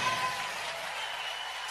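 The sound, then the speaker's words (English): A crowd at the Values Voters gathering applauding, a dense, steady wash of clapping that stays at an even loudness throughout the short stretch, with no voices standing out. “And that was the crowd that was at the Values Voters, had a chance to get together and also hear from the president this weekend.”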